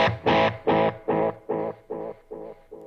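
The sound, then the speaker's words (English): A distorted electric guitar chord run through an echo pedal, repeating about eight times at a steady rhythm, each repeat slightly quieter than the last, with no talking. “Echo, you know, like this.”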